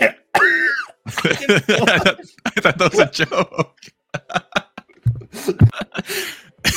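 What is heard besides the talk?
coughing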